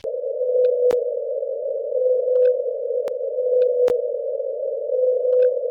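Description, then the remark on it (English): A male whale's song, from the only whale calling at his unusually high frequency, heard as one steady, unbroken mid-pitched tone that holds for several seconds, with a few faint sharp clicks and soft chirps scattered over it and no voices. “He's the only one broadcasting at his frequency, and it's much higher in frequency, shorter in length, and more frequent.”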